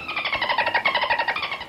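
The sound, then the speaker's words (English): The character Marina imitates dolphin chatter to call her dolphin friends: a rapid, steady string of high, squeaky clicking pulses, roughly nine per second, loud and unbroken for under two seconds with no other talk. “Marina can speak dolphin? Sure sounds like it.”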